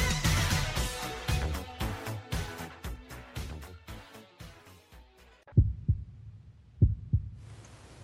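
A thick, busy wash of sound fades out, leaving deep heartbeat thumps in slow lub-dub pairs, loud against near silence, marking the return to part two of the Ghost Chronicles International show.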